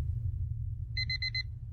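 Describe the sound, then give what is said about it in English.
An alarm clock beeps in a quick burst of four shrill, clear electronic tones over a steady low background hum. “The alarm goes off and I grudgingly reach out and press the snooze button.”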